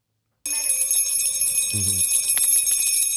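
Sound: small bell ringing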